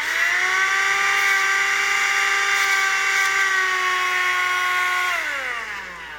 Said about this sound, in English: Got some black pepper here. You'll have to take my word for the fact that there's some in the palm of my hand. As I vacuum this up,